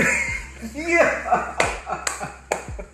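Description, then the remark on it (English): Several sharp, crisp finger snaps, made as if to order an IPA at a bar, about four bright clicks at uneven intervals, pop out over a voice and some background murmur. “But when I started drinking IPAs, I would step to the bar and I was like, snap my fingers and be like, let me get an IPA.”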